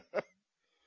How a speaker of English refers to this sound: I got to stop every so often and clear my throat.